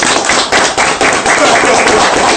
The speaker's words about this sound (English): And does everybody else here share a similar story? Yes. Let's clap it up.